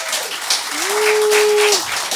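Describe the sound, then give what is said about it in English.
A crowd of people from Ballarat or surrounds applauds with steady, dense clapping that stays fairly loud throughout, while a single sustained vocal whoop rises and holds over it for about a second. “So how many people, round of applause if you're actually from Ballarat or surrounds, yeah?”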